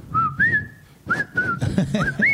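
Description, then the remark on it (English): Someone whistles a short melodic tune, a few rising and sliding notes in separate phrases, clear over a low background rumble. “They were fucking whistling that fucking song.”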